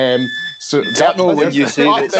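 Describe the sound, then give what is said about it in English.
A steady, high electronic alarm tone sounds briefly at the start, then fades under a voice that talks over it for the rest of the moment. “There's the nonce alarm going off.”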